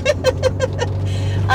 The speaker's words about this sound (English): Sorry, my car. We're driving. There's gravel on the road.